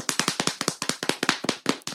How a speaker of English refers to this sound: So, without further ado, sugar, an ass slap drum roll, please.